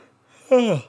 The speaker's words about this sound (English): God, I'm yawning so much.